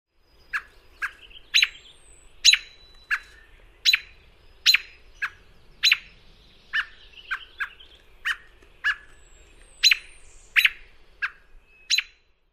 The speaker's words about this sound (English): Next is a cheep and a cuck. It is often given in the pattern of 1 to 2 cheeps followed by 3 to 4 chucks.